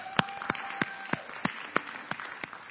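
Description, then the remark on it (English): A single person claps hands in a steady rhythm, about nine sharp claps roughly three per second, with a faint hum of background noise between them and no talking. “Media team, I mean, seriously, can I clap?”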